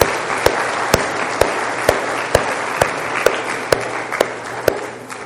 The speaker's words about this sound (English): Let's give another round of applause for these children. Yes.